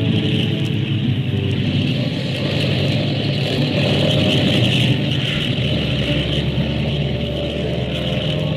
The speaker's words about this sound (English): Airplane ready. Skyliner flight 35 ready. Take off when ready, flight 35.